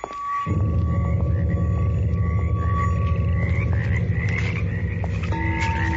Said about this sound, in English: Oh, it's like a hothouse down here. Oh, insects. Just mosquitoes.